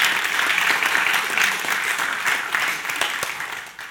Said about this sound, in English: Thank you. That's, well, we'll clap Maxwell even though he's not here.